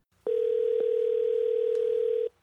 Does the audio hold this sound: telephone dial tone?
yes